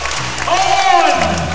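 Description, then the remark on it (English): A large basketball arena crowd at the Entertainment Centre in Adelaide applauds and cheers loudly for the home team, the Sixers, in the last minute of a game, a dense, sustained roar of clapping with rising whoops and a swelling shout carrying through the middle. “And now he wants the crowd up and about.”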